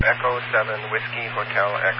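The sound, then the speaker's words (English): A tinny, band-limited radio transmission through a repeater cuts in abruptly mid-word, a voice reading off a call sign ending Whiskey Hotel Echo over a steady low hum; the opening is chopped off because the sender keys up too quickly. “So you're looks like you're quick keying a little bit because I'm not getting the first letter of your call.”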